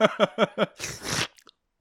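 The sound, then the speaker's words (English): Four quick voiced mouth pops in a steady rhythm, then a wet, hissing slurp lasting about half a second, ending with a couple of tiny clicks. Fairly loud, made by a person's mouth as a Foley sound effect. “You slurp it to get it wet, do you?”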